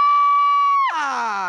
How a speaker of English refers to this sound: Is that breaking new ground? Does it deserve the screen? I think we need a disclaimer scream.